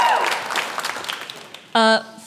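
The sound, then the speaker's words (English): A crowd at a Women's Super League match at the Emirates, a record attendance of 60,160, cheers and claps in a dense, steady wash that gradually thins, then a short, loud, buzzy horn-like blast cuts in near the end. “Give yourselves a cheer.”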